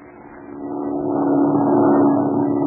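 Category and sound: vehicle, airplane engine droning overhead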